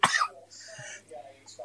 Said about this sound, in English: Oh, someone else coughing.